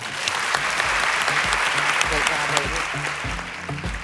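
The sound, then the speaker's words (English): A crowd claps steadily for about four seconds, a dense, bright patter of many hands at a fairly constant loudness, with some low murmuring voices underneath, applauding all at the CBRE Women's Network at the end of a show. “Another round of applause for all at the CBRE Women's Network for making this show possible.”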